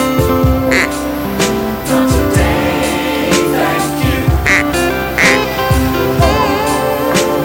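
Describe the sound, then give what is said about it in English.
Someone imitates a seagull with a run of loud, nasal, squawking calls, repeating in uneven bursts for several seconds. “It's as close as I can get to a seagull.”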